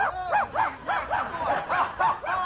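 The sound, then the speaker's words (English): A dog barks in a rapid, steady string of high yapping barks, about nine in quick succession, loud with no talking over them. “Why don't you go and play with the dog?”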